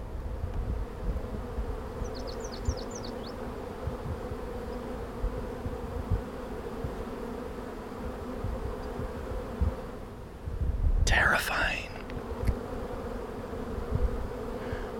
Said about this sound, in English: Like, I'm looking at some kind of hundreds of bees swarming around these boxes at 10 feet in front of me. I'm a little nervous to get any closer, but let's see if I can reach out my hand. You can hear them.